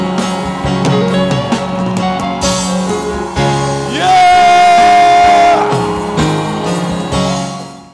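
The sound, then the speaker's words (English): An audience claps and shouts together, giving God a shout of victory at the end of a prayer, over a dense, sustained musical drone, with one long, high held cry rising above the noise midway before the cheering fades out. “In the name of Jesus, clap your hands and give God a shout of victory.”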